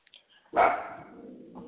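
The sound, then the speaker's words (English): A single sharp, loud bark from a dog named Georgia, its tone trailing off over about a second, with a few faint soft sounds just before it. “my dog just decided to bark.”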